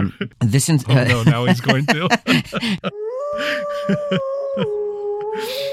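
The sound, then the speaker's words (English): A person talks briefly, then a single long, steady wolf-like howl rings out for a few seconds, holding one pitch before dipping slightly, with faint murmuring beneath it. “Insert some wolf howl stuff.”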